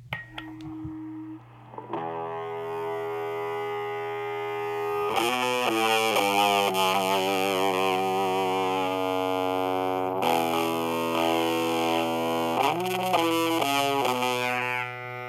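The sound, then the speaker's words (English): Distorted electric guitar played through an effects pedal synced to a phone app, heard through the app rather than a miked cabinet: sustained fuzzy chords ringing out with bursts of rapid picked notes and a slight hint of feedback, steady and fairly loud with no talking. “I was really impressed with how this pedal is capturing things”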